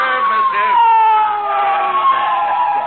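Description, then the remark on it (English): A police motorcycle siren wails loud, a continuous tone whose pitch slowly sinks and swells over a few seconds, as the police officer pulls up and parks his motorcycle. “Maybe it's a fire engine, Molly.”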